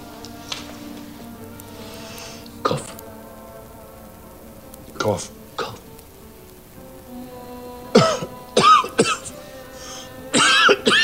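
Several sharp coughs break out at irregular intervals, growing more frequent and clustered toward the end, with a faint hum in the background between them.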